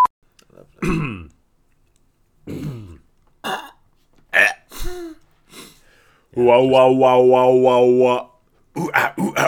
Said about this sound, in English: Just cough up the whiskey-soaked hairball that I've always got at the back of my throat.